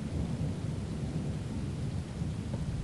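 nature, rolling thunder with rain

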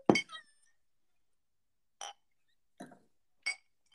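household object, wine glasses clinking

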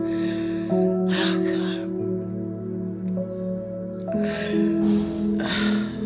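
human body sound, nasal sniffing

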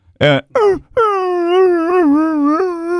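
animal, dog whimpering and yipping

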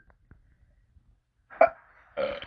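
human body sound, attempted burp

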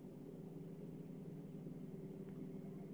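vehicle, car engine rumble

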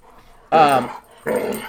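animal, dogs growling

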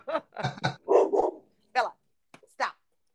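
animal, dog barking

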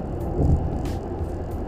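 vehicle, car driving past

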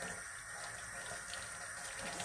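household object, running water

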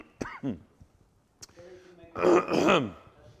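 human body sound, cough

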